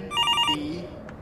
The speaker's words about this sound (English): A telephone glued to the wall starts ringing. I'm going to answer it.